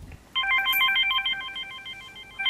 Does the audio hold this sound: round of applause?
no